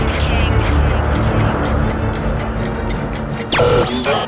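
A steady, rapid ticking like a clock, sharp clicks evenly spaced over a thick low rumble, cut off near the end by a sudden swooshing electronic burst.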